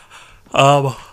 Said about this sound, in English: Excuse me, I'm yawning.